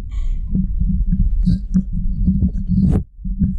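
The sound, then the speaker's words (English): A dog, Ziggy, sniffles in a few short, snuffly bursts over a steady low rumbling, with one louder, breathier sniff near the end before a brief lull. “oh, do you hear my dog sniffle?”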